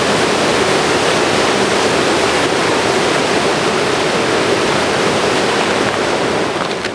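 A roaring river rushes steadily and loudly, a dense unbroken wash of churning water heard upstream at the peak of its roar, with no voices or other sounds breaking through for the whole stretch.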